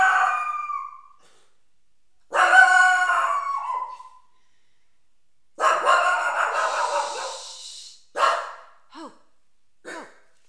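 A dog barks loudly: several long, drawn-out barks or howls with pauses between, then a few short yips at the end. No one speaks.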